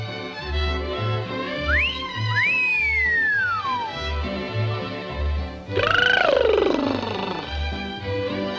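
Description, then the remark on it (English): In a Tweety cartoon, a clear wolf whistle at food, a quick upward sweep followed by a long falling glide, rings out over a bouncy, steady musical beat, followed by a loud burst of sliding cartoon sound effects. “Seriously, who wolf whistles at their food?”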